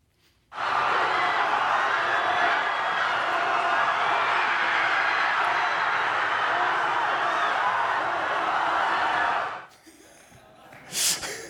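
High school classmates watching a race cheer a runner on loudly and without a break for about nine seconds, a dense roar of overlapping young voices that cuts off abruptly, followed by a brief sharp noise.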